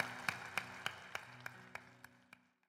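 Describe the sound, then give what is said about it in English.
Audience applause for the Lord in a steady, even rhythm, about nine sharp claps, heard over a soft sustained musical background. The claps gradually grow quieter and trail off into silence. “Can we give the Lord an applause?”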